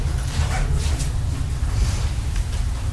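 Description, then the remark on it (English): A dog barks a few times, the yaps faint and irregular over a steady low rumble of background noise. “Also, the dog's barking.”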